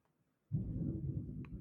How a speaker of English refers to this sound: And it is thundering crazy here. There might be some storms in around the area where you're living